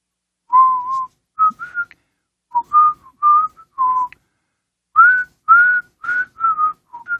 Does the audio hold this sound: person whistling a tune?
yes